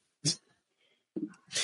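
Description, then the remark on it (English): A person imitates the annoying heavy breathing of someone sitting next to them while watching TV: one sharp, loud huff, a short near-silent pause, then a couple of longer, noisy breaths close together. “Because after a while, you get so annoyed with him, nigga sitting next to you just breathing like.”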